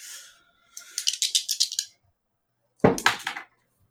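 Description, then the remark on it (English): Two dice rattle in a rapid rhythmic shake for about a second, then a louder clatter follows as they tumble across a hard surface. Clear, with no talking. “I hate to make you roll again, but I think to get past this...”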